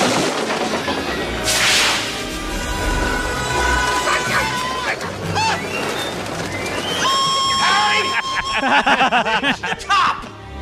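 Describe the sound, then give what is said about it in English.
A chaotic scene from a Macaulay Culkin movie of pigeons attacking the character Marv: frantic flapping, whooshes and swipes mix with his loud, strained screams and yells, all dense and continuous for about ten seconds. “play the sound with the birds attacking him.”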